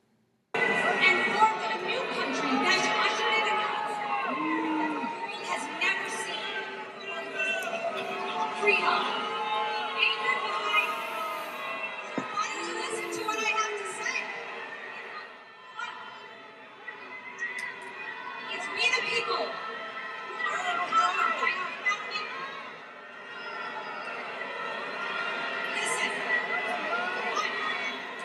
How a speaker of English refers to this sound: But this is State Senator of Arizona, Michelle Ugenti, getting booed off stage at Turning Points.